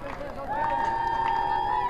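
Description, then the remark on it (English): A team cheers from the Auburn High School dugout to encourage their leadoff batter to get aboard. Several voices rise into a loud, sustained chant that holds a steady pitch for over a second, with a low murmur underneath. “You hear the cheers from the Auburn High School dugout over there as they encourage their leadoff batter to try and get aboard.”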